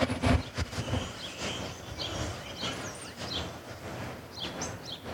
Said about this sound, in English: Can you hear the birds? Yes, I was just about to ask you.